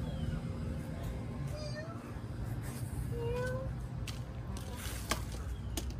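A pet cat meows a couple of times outdoors, short rising cries that are fairly faint against steady outdoor background noise, with occasional clicks and rustles.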